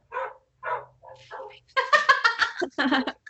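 Dogs squabble with a few separate yelping barks, then a dense, overlapping flurry of barking and growling. The sound is moderately loud and nobody speaks over it.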